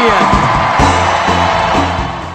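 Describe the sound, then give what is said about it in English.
A huge crowd inside a convention center roars with sustained cheering and scattered whoops for Senator Edward Kennedy, loud and dense throughout, with a rhythmic chant-like pulse running beneath the wash of voices. “Celebrity endorsements were being thrown around like confetti, but the biggest cheer of the week went to”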